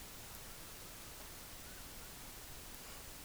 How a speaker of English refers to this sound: All right, so you can hear that, right? I you know, I'm raising up the volumes and I'm going ahead and turn off the noise gate. You guys can hear the humming.